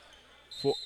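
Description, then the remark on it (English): A referee's whistle at a Marysville versus Port Huron High basketball game, called for a foul, cuts in halfway through, a shrill, steady high tone held to the end, with a brief loud burst of lower noise from the game underneath it. “We had a whistle.”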